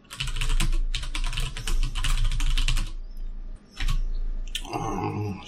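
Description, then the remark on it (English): Rapid typing on a computer keyboard while changing the encryption key on a server, a dense run of clicking keystrokes for about three seconds, then a short pause and a brief final burst of keys. “That is a lot of keys to hit.”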